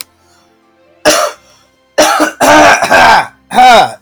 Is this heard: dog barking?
no